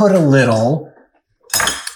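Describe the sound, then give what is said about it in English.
Artisan crackers being picked up off a plate: after a short voiced murmur and a pause, a brief burst of crisp clinking and rattling against the dish. “I do want to hear a crazier story, as I'm going to grab now.”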